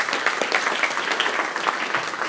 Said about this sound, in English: Let's have a round of applause for this young man.